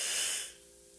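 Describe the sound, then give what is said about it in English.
A breathy yawn exhaled into a microphone, a loud airy rush that fades away after about half a second, with no talking. “Ooh, shit, yawning on the mic.”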